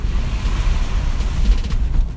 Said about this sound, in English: And there, I just drove through a puddle of water.